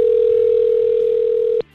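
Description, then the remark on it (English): A phone rings on an outgoing call to the caller's mother: one loud, steady electronic ringback tone holds for about a second and a half, then cuts off abruptly. No one speaks. “Let's see if she'll answer the phone.”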